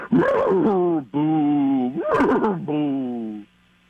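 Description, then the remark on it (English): A person vocally imitates a ghostly horse: a wavering, moaning whinny in two long drawn-out phrases, with breathy, rising and falling pitch, loud and alone with no other sounds. “It's like a haunted horse, though. Like one that's like a ghost horse. Okay, let me try a ghost horse.”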